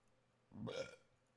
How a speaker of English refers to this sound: Hold on, I got a burp.